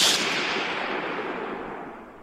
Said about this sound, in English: That wasn't even music. No, it was a gunshot. No, it was really like not very loud.